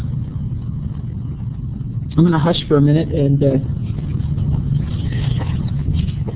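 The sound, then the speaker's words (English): An airplane passing overhead: a steady, low engine rumble runs through the whole clip, holding fairly even in loudness while a man speaks briefly over it. “see, your plane's over.”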